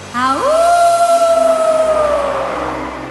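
A howling storm wind swells quickly upward in pitch, then holds a steady, hollow moaning tone for a few seconds before gradually easing off. No voices are heard.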